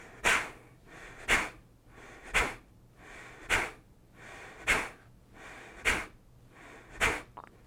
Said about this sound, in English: Let me show it to you first. So it's basically like breathing in.